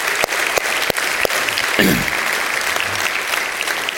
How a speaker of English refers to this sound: So let's give him a round of applause.